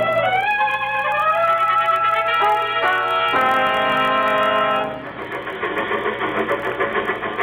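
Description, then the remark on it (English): A loud train engine runs with sustained, whistle-like tones that shift in pitch, then settles into a steady, rhythmic chugging. No one speaks. “I'm going to take the next train to Cheyenne.”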